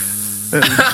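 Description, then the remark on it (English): A steady, pure ringing tone from rubbed wet glass rims hums for half a second, then abruptly turns into a harsh, wavering buzz like an angry beehive, loud and raspy, within a piece of music. “Now, those hideous beehive sounds massively contrast from the beautiful and grandiose classical music.”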